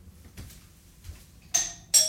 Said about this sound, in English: Oh, the doorbell. Do you think it's a trick-or-treater?